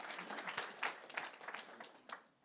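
A crowd breaks into a brief round of applause for an audience volunteer, many hands clapping in a dense, steady patter that fades off toward the end.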